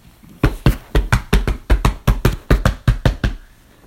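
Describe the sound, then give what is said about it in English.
A locked back-entrance door being smashed open by a bull with its horns, a fast, steady series of about fifteen loud thuds and bangs, then the pounding stops and a faint rustle remains. “Bull, get this door fully open.”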